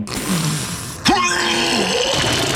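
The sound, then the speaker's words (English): Wolf Blitzer, on CNN, gives a sudden throaty retch, vomiting into his own mouth: a strained, gulping gag with a low groaning tone lasting about a second, over a steady background hiss. “Wolf Blitzer, like, vomited into his own mouth?”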